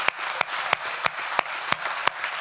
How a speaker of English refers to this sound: In 2016 at Life Point Church, we baptized 121 people. Friends, nationwide, that's unheard of, and that's worth giving God a big round of applause if you would.